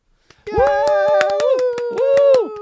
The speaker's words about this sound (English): Well done, Timmy and Billy. That was quite an entertaining show. Timmy and Billy take a bow, soaking up the applause.